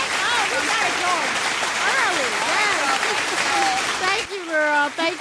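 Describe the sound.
A crowd claps loudly and steadily, with whoops and cheering voices rising over the applause. It cuts off abruptly near the end, leaving a single voice speaking.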